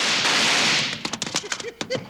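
A burst of gunshots: several sharp, loud cracks fired in quick, irregular succession, following a brief harsh rushing hiss at the start.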